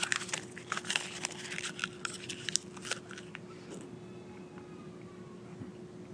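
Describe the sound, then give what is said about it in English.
Wet crunching and crinkling bites as someone chews on little strips of paper kept by a computer, a rapid irregular series for a few seconds before fading into a quiet hum. “And on top of that, I have these little strips of paper that I can eat right by the, they have strips of paper by the computer.”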